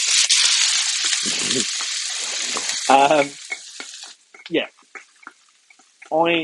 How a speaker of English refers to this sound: Heads up, I'm just about to put all of the chopped stuff into the pan, so you're going to hear sizzling. It is not my skin.